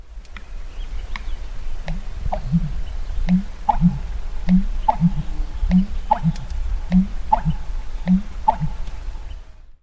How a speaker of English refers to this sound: Others think that he's actually blowing against his closed bill to force air from its trachea into his esophagus. I mean, when you think about it, the American bitterns are basically burping to sing their songs.